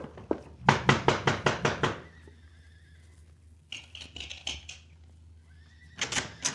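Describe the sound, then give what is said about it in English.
Quick, regular hoofbeats clop, then a horse lets out a high, wavering whinny, followed by another burst of neighing and a final flurry of hoof clatter. “I want you to go to the corral behind the house and saddle the big Palomino horse for the senorita. Bring him around front with our horses, amigo.”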